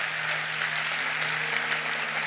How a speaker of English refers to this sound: Clap your hands all over this house right now and love him. Oh, yes, love him.